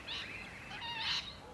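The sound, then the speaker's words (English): Harsh, shrill lorikeet squawks rise in a few overlapping bursts as the lorikeets chase a blue-faced honeyeater out of a gum tree, not loud, with a faint outdoor background and no talking. “Yep, those lorikeets just muscled it straight out of the tree.”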